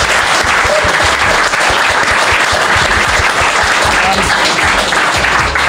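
Loud, sustained applause from an audience for a guest from Fuji Film, a dense wash of many hands clapping steadily for several seconds without any voices standing out.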